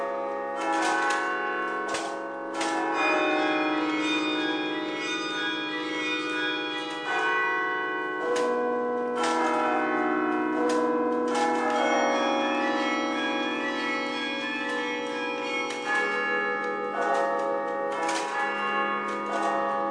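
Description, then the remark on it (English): Carillon bells ring out a continuous melody, many pitched bell strikes overlapping with long resonant tails, loud and steady with no voices. “so the only place they exist all over the world, these carillons.”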